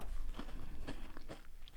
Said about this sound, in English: Well, I can certainly taste the peppermint, the cool menthol flavour coming through. They're quite small, crispy, and they're quite dainty looking.